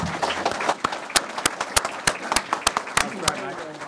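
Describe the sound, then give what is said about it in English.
An audience applauding three speakers, John Howard, Paul Kelly and Patrick Mullins, after an evening talk on an era of politics: a dense, steady patter of many hands, with sharp, loud individual claps popping out at irregular moments across the few seconds. “These three great figures talking to us about an important era of our politics, and I'm sure that, like me, you want to give them appropriate applause.”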